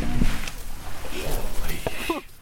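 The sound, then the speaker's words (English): A deep, rumbling alligator bellow, about 10 feet away, a low guttural growl that holds steady for a couple of seconds before fading out; the alligator is defending its territory. “It's making a sound called bellowing.”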